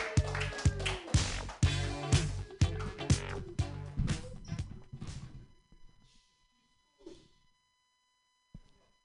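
A burst of crowd applause at a comedy show as the next comedian is introduced, dense and loud for about five seconds, then thinning out to a few scattered claps before fading into near silence.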